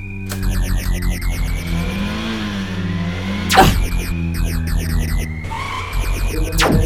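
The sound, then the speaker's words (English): A car engine roars loudly at speed, revving and shifting pitch continuously, with a sharp whooshing pass midway and sustained mechanical drone throughout, no voices present. “We're moving too fast! I can't just stop the car!”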